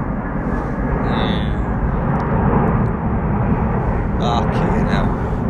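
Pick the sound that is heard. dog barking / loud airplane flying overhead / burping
loud airplane flying overhead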